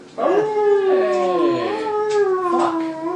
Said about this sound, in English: Now, the hellhound that's running towards you guys is probably banging and barking and growling, but you actually hear it from a great number of hellhounds somewhere deep in the lair.